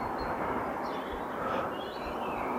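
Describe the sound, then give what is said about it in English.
A single car drives along a quiet road on a sunny day under a blue sky, making a steady, even rushing hiss of tyres and engine that holds at one level throughout, with faint bird chirps above it and no talking. “At the moment, just seeing a single car heading down the road.”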